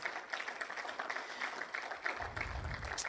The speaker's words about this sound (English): Let's give God a clap offering.